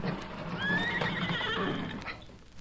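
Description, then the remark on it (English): A horse named Silver gives a loud, high whinny that rises and wavers for about a second and a half before trailing off, with faint low rumbling and shuffling underneath. “Well, Silver's ready to go.”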